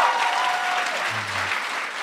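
A crowd applauds the film Searching winning the Alfred P. Sloan Award at Sundance, a dense wash of clapping that stays loud and even for about two seconds, with a faint whistle-like tone early on and a brief low hum midway.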